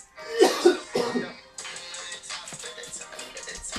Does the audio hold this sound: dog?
no